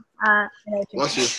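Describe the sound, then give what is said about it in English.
A single loud sneeze: a short voiced build-up of two quick gasps, then a sharp breathy burst that trails off. “Bless you.”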